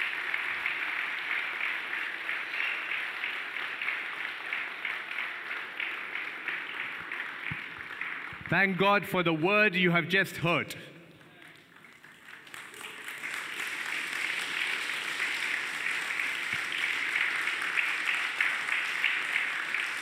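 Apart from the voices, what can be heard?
audience clapping hands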